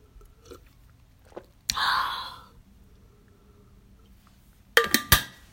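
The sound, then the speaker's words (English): A breathy slurp as someone sips hot tea from a cup, then a quiet pause and a few sharp clinks, like the cup being set down on a saucer. “Let me just take another sip of tea because I don't want it to get cold, you know.”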